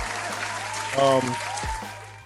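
A round of applause for a band rattles steadily for a couple of seconds, dense, with a brief vocal whoop rising over the clapping midway.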